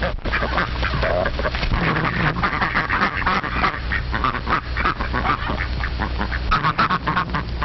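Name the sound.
duck quacking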